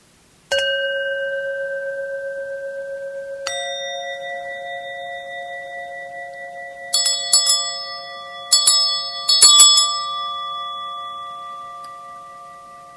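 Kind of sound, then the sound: signal or alarm, ringing bells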